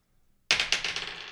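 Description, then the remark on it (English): A twenty-sided die clatters across a hard tabletop and lands on a natural 20: a sharp first hit followed by a quick run of bouncing clicks that gradually soften. Crisp, with no voices. “Natural 20. I can't believe it.”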